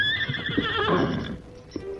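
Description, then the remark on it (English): A stallion named Silver whinnies loudly in a long, wavering, high-pitched call that rises and then trails off, with a few soft hoof thumps underneath and no one speaking. “Then, sensing that something was wrong, but used to obeying his beloved master, the faithful stallion started from the camp at a slow pace.”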